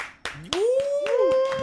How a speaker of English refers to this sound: Make some noise. Sometimes I clap for myself.